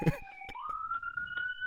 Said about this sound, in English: I didn't realize you guys could hear the sirens. I live in a really busy street here in Philly, and there's a police station pretty close by, so there's quite frequently cops